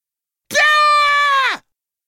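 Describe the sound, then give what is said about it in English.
One loud, drawn-out performed yell of pain from a single female voice, as of someone yanking a clump of hair out of her own head, lasting about a second. It holds a high, strained pitch, then drops away sharply into silence. “The pain was so intense that she couldn't help but yell.”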